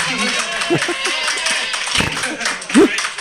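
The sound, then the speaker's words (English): A few scattered, half-hearted claps from a small audience, irregular and thin rather than a full ovation, with some brief vocal murmurs mixed in. “I love pity applause.”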